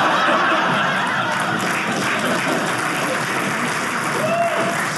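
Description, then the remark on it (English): Steady, dense applause from an audience fills the whole stretch, a continuous crackle of many hands clapping at an even level, with a few scattered chuckles mixed in. “Ah, some applause.”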